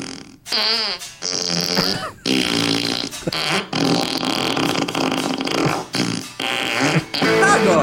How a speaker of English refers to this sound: That is not a guitar pedal. Yes, it is. That is just a fart machine disguised as a guitar pedal.